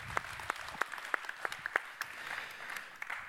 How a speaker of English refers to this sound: There are delegates who serve this congregation in ways that we appreciate and that make the life of this body really happen. So let's give them a big round of applause and show our appreciation this morning.